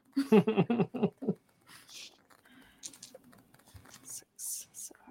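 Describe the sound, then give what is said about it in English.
A brief spoken phrase, then a large handful of dice clatters and rattles across a surface, a scattered run of quick, light clicks that stays fairly soft for several seconds. “Here goes my 1,000,000,000,000 dice.”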